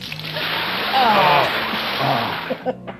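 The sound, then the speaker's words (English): Water pours and splashes down steadily for a few seconds, a loud hiss with a brief vocal sound mixed in before it tapers off into a few small drips. “You might need some water to clean that off.”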